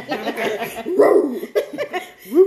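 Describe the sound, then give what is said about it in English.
A dog, Jiggy, barks and yaps several times in quick, uneven bursts, fairly loud, with what sounds like light laughter mixed in. “We didn't say it. The dog said.”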